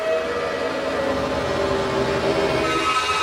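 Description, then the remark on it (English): A metro train's steady, loud rumble with sustained high, whining tones layered over it, holding constant for a few seconds with no voices. “What's a bit creative though is that I use the Metro. You can listen to it here.”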